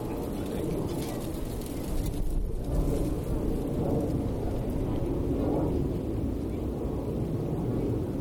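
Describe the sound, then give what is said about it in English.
A loud, deep roar of an airplane flying overhead, a steady low rumble that fills the whole stretch and swells slightly partway through, sounding powerful. “It'd be cool one day when they make noiseless airplanes.”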